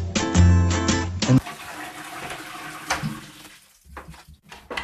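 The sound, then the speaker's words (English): A steady stream of liquid splashes into toilet water with a hissy, trickling sound that breaks into short spurts near the end, after a brief burst of tonal music at the start. “I'm warning you, I'm going to pee now, so if you don't want to listen, it's fine.”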